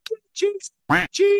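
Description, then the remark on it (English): Several short voiced bursts, with a single loud, buzzy, nasal duck quack dropped in midway, bleeping out a swear word. “Like, I'm sorry for the quacks you're having to put in for this, but it was constant.”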